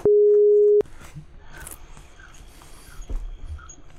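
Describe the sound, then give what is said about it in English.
One loud, steady electronic ringing tone from an outgoing voice call sounds for under a second, then cuts off, leaving faint rustling noise. “Just call in. Just or just do the voice call. I'll call her.”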